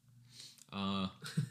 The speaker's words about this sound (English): I like the sniff there.